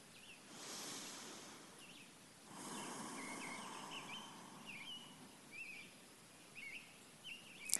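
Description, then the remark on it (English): Faint birdsong drifts in, short scattered chirps and trills repeating over a steady outdoor hiss with soft rustling swells, and no one speaking. “So, listening to the birds.”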